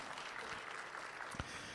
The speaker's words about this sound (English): Let's give Lee a round of applause. That was fantastic.